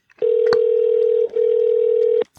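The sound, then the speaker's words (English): A phone's ringing tone sounds clear while calling someone: two long, steady electronic tones separated by a brief gap, with a few sharp clicks. Nobody speaks. “I got to find his number in my phone because I don't know it by heart.”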